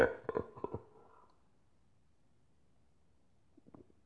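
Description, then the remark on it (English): A few quick, wet gulps of someone swallowing a drink into the microphone, loud and throaty in the first second, then quiet, with a faint soft swallow near the end. No talking. “I just swallowed into the mic.”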